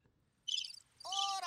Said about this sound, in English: All right. That's a lot of crickets, my dude. You should just hit it again. How long is it? I don't know, but hit it again. Turn it off.